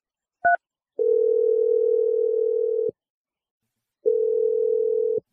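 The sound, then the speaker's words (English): A brief two-toned electronic beep like a keypad press, then a steady, low telephone tone sounds for about two seconds, stops, and returns for another second, as a phone call is being placed. No voices. “We're going to let you make your Awkward Tuesday phone call to your girlfriend, and then we're going to jump in when we feel like you need a little bit of help.”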